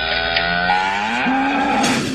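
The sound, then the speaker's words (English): A single long, loud cow moo sound effect, a low drawn-out call that rises slightly in pitch partway through and holds steady for about two seconds, with no talking. “It's something we call COW. It's an acronym for Clips of the Week.”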